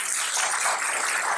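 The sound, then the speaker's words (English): An audience applauds a man for leading worship at a service, a dense, steady wash of clapping that holds at an even level throughout the short stretch, with no voices over it. “And by the way, can we just give him a round of applause for leading worship today?”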